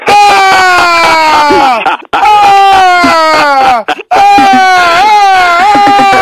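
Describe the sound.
A person imitates a scream, that of someone who fell down a flight of stairs, likened to the Godfather horse-head scene: three long, loud, anguished wails, each sliding gradually downward in pitch with a wavering tremor, separated by brief gasping breaths.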